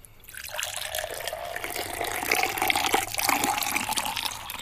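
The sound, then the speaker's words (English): Water pours steadily into a vessel of undetermined size during a game, a continuous splashing rush with a hollow resonant tone that slowly shifts as the vessel fills. No one speaks. “Ready and to pour. Okay. Pour!”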